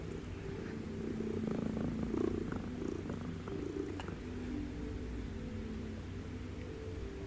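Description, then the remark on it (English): A friendly cat named Morag purrs steadily, a continuous low rumbling throb that holds for several seconds with no voices. “You wish wee Morag well, as you whisper sweet little nothings to this most friendly of cats.”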